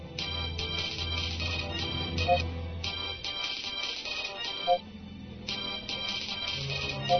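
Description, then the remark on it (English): A comlink rings again and again in bright electronic bursts, clustered in repeating patterns with short pauses, over a low steady drone and faint background tones. No one speaks. “I have avoided answering the constantly ringing comlink.”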